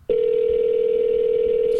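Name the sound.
telephone dialing tones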